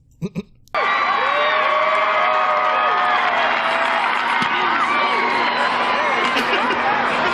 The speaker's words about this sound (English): Stunned crowd, you can, people. Yeah, you can literally hear the difference between the claps and then the silence. Yeah. Like, there was no claps.